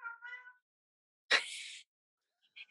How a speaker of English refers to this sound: Your cat has something to say about that. My cat has a toy mouse and she wants me to play with her. All right. I don't know if you guys could pick that up on the microphone